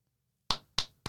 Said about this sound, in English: Round of applause.